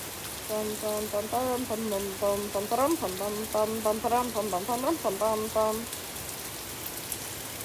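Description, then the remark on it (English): Steady, even rain from a video game thunderstorm hisses throughout, a soft continuous patter with no pauses, while a voice talks over it through most of the middle before the rain continues alone. “Now you guys just get to listen to the soothing rain.”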